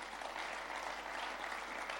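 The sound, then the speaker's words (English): An audience claps steadily, a dense wash of many hands applauding at once, sustained and even in loudness for a couple of seconds with no voices standing out. “Or you won't clap for them.”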